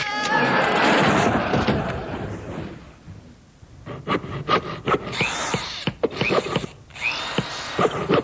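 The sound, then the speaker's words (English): A retractable tape measure snaps back: a loud rushing, rattling whir for about three seconds, a brief lull, then a burst of sharp, irregular clacks and snaps as the tape whips home. “Now, about this retractable tape measure.”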